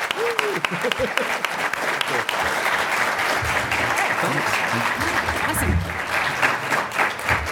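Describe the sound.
A crowd applauds two guests steadily for several seconds, a dense wash of clapping with a few cheers, while a voice briefly speaks over it at the start.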